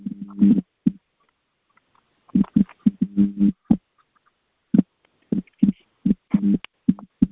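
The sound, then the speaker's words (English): Irregular bursts of buzzy, crackling thumps of air noise from someone's open phone microphone come in loud clusters with short silent gaps between them. No one speaks. “Somebody have a lot of air in their phone, and it's making it hard for us to hear.”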